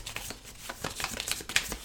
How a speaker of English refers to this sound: So now we place the five cards on top of each of those five piles, and we shuffle each of those piles. So we're shuffling one, I'm shuffling another.